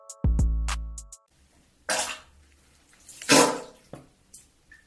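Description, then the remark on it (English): Fart sounds: a loud, low, buzzy blast lasting about a second, then a few shorter, breathy sputtering bursts with pauses between them. No talking. “Thank you for the fart sounds, for the poo poo sound.”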